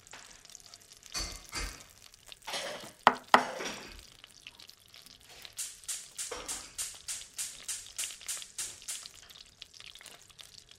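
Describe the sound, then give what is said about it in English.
A gas fireplace starting up: a couple of sharp clicks and a rushing hiss, then a steady run of about a dozen quick, evenly spaced ticking pulses. No one speaks. “Is that somebody starting up a gas fireplace? Yeah, that's exactly what that is.”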